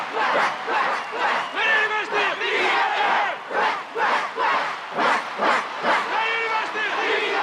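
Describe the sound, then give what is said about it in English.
The Iceland team's battle cry chant: many voices shouting together in loud, rhythmic bursts that rise and fall in quick repeated pulses, with a few dog-like yips and whoops mixed into the din. “But I do like the Iceland cheer.”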